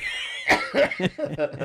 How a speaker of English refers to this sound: Clear your throat again.